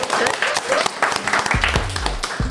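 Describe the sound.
A group of people clapping for a woman who has just introduced herself and her Instagram handle: a dense burst of applause made of many quick overlapping claps at steady loudness. Some voices and low tones murmur underneath toward the end.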